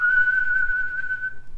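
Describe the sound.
A person whistles one long, steady, high note lasting over a second, then lets it fade out, with a faint low hum underneath, imitating the whistle Gandalf uses to call the horse Shadowfax.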